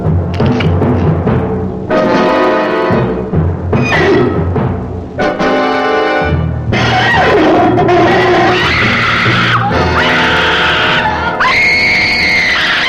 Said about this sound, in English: I decided I was just hallucinating, so I put it in my mouth and bit down. It screamed so loud that you could hear it all over town, so I had to throw it on the ground and step on it.